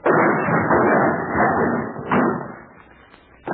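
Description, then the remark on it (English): A loud crash as a door is smashed open with a shoulder, wood splintering and rattling for a couple of seconds, a second jolt, then clatter fading out with a final small knock. “Put your shoulder to it. We want in.”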